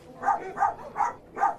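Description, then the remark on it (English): A dog barks four times in a steady, evenly spaced rhythm, short moderately loud yaps, with no talking over them, in an advertisement for Busch Dog Brew. “Your bark will have to be as good as your bite.”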